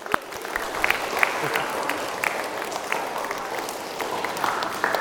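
crowd, audience round of applause

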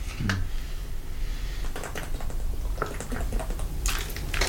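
food or drink, sipping water

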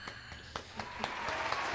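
sound effect, applause sound effect

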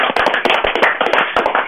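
crowd, short applause

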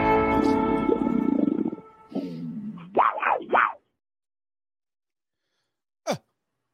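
animal, big cat roaring

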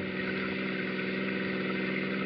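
vehicle, car engine running

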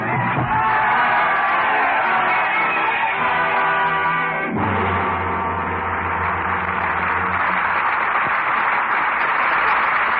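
crowd, roaring crowd

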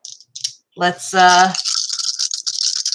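dice being rolled

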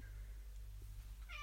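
animal, cat meowing

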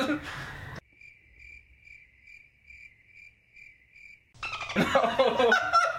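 sound effect, cricket chirping sound effect

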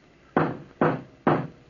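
impact, pounding on a door

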